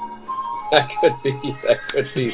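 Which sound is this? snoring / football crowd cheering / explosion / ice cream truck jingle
ice cream truck jingle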